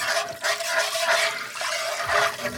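About a cup of water pours steadily into a cooking pot with minced onions for a couple of seconds, a continuous splashing rush with slight surges, fairly loud, with no talking.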